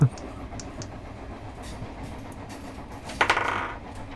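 Dice roll on a table, a short rattle of small hard dice tumbling and clattering on the hard surface, a quick cluster of clicks over a steady low rumble of background noise.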